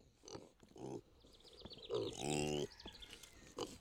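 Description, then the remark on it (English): Kunekune pigs on a pig farm near Adair, Iowa, grunting and squealing, a series of short rough grunts followed by a louder, drawn-out squeal, with faint high chirping in the background. “Okay, so these are Kuni Kuni pigs, K-U-N-E, K-U-N-E, and they actually are a red meat.”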